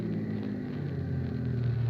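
A large bus's engine rumbles low and steady as it pulls in to one of its regular stops, a constant idling drone with a deep hum, no voices or other sounds over it.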